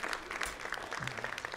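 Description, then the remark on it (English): A church audience at Fellowship Church claps steadily together for the youth, a dense, continuous burst of applause at moderate loudness, with a faint voice or tone rising briefly underneath. “Let's give our youth a great big round of applause.”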